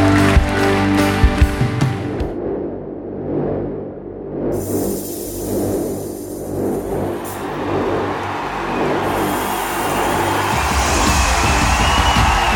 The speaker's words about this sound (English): Come on, let's clap our hands for everybody who prayed that prayer today. Great job.